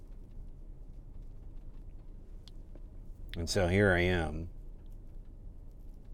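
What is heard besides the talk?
car interior ambience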